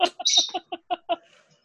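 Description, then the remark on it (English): A small pet bird chirps in a quick series of about seven bright, clipped chirps with a short warbling trill near the start, then quiet. “Your bird. I'm sorry. There's nothing I can do about my pet.”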